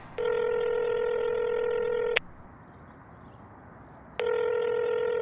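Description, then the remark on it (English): A phone call to an Uber driver rings out with a steady electronic ringback tone, one long ring of about two seconds, a pause, then a second ring starting, all over a low background hiss with no talking. “I'm gonna call our Uber driver and see if you left it in there.”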